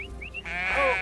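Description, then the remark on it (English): A sheep gives one long, wavering bleat up close, loud and nasal, after a few brief high chirps at the start. No one is speaking. “They looked after sheep, goats, and wild turkey.”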